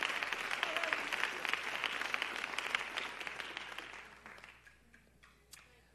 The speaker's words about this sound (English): Give a great big hand clap to the Lord before you're seated.